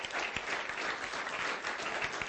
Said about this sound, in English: Come on. Good on. Let's give her a clap. That was fantastic.